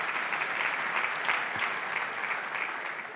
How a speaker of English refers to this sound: My goodness, on Great Ethiopian Run Day, clap for yourselves or something. This is very impressive.